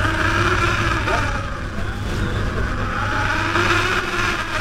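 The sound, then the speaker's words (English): The engine of a working lobster boat motoring at sea toward its first trap buoy drones steadily and loudly, a continuous low mechanical rumble with whirring overtones and a wash of wind or water noise, with no clear voices. “As soon as the boat comes up to its first buoy attached to a line of traps, the crew swings into action.”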